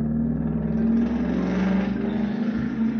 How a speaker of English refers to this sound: Excuse the car in the background.